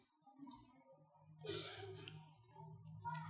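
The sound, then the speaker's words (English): A single raspy cough bursts out midway, fairly quiet, with a faint low murmur and hum running underneath before and after it. “Is that a natural cough from a pioneer?”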